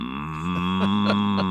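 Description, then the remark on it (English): A cow on a farm in Brookhaven lets out one long, steady, loud moo, holding a low droning pitch for over a second with no talking around it. “A tree fell on the fence. Brought the fence down, and then the cows.”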